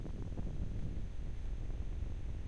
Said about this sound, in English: It's really windy today.